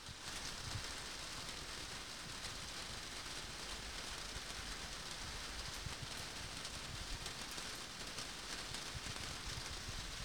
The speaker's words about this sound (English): Can I do the mic thing again? Yeah, because it's like raining a little harder. It's raining harder, so here's a little rain break, you guys.